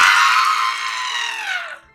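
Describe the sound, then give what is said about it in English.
A person loudly imitates a mountain goat's bleat with one strained, sustained cry lasting about two seconds. It wavers slightly, then the pitch slides downward as it trails off. “I am a mountain goat. I really enjoy climbing on things and bleating really loudly.”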